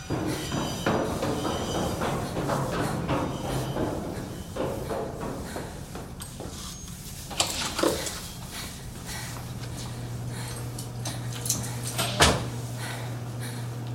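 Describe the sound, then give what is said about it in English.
A large, heavy blue door, opened by swiping a card, opens with a scrape, then later swings shut with a solid thud, over a steady low mechanical hum and faint background rumble. “There is a large blue door. Swipe your card and get inside.”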